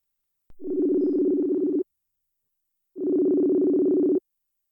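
A phone ringback tone sounds twice as a call is placed from a phone, two steady, buzzy bursts of a bit over a second each, separated by a short silence, clear and fairly loud with no voices.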